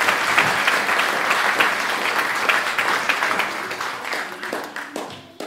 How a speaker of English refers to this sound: Well done. Round of applause for those guys.